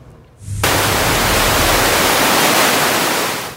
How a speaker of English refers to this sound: What a view on the West Coast. Big storms, big seas, and strong winds whipping up waves in Tofino. The surf expected to be higher through the weekend and perhaps even longer as more storms hit approach the coast into next week.